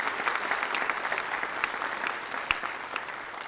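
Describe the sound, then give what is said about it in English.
A crowd applauds steadily after a speaker asks them to give a round of applause and thank God for their nation, with dense overlapping claps forming a continuous, fairly even wash of sound for a few seconds. No one speaks over it. “And I think you ought to give a round of applause and thank God for being in a nation.”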